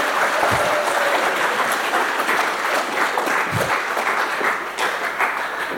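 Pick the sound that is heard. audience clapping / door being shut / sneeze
audience clapping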